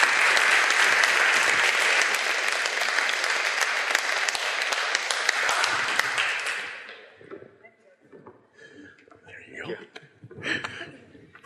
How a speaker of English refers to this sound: So I'm going to ask them to come forward. I'd ask you to give them a warm round of applause as we sit over here and have a little conversation about relationships. So please welcome them to the stage.